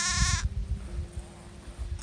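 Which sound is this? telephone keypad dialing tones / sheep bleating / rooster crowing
sheep bleating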